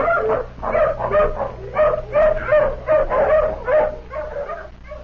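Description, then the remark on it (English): A hound, sniffing a shirt to pick up a scent on a trail, barks and whimpers in a rapid series of high, yelping bursts, loud, with short pauses between cries and a low steady hum underneath. “Come on, hound, sniff. Take another smell of this shirt.”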